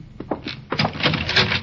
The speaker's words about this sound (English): Close the door.